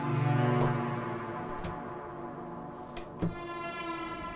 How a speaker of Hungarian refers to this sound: Mindegy, ez most nagyon halk, de ez is egy ilyen... tehát jó része a hangoknak egyébként fehér zaj alapú nálam. Tehát itt is az oszcillátor megint egy fehér zaj. És ez megy át egy ilyen feedbacken